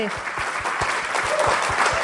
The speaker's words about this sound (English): And thank you, guys. Big round of applause for everybody here for coming Yay. Out and checking it out.